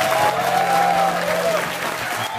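A round of applause: dense, steady clapping from a crowd that holds at an even loudness for the whole stretch, with a faint whistle-like tone rising briefly above it.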